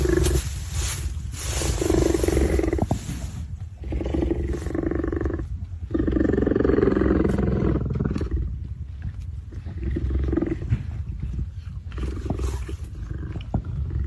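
A big cat roars loudly, a series of deep, rumbling growls and roars repeating over several seconds with brief pauses between them, no voices present.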